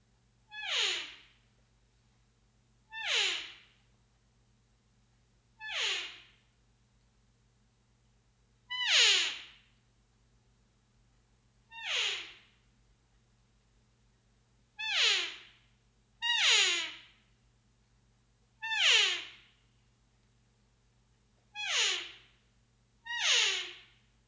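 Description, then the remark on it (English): A series of about ten cow elk calls blown on a Trophy Wife external reed elk call, created by Steve, each a short, high, nasal mew that slides downward, spaced irregularly a second or two apart with no talking. “I want to demonstrate for you an elk call that Steve has basically created, and that is the Trophy Wife elk call.”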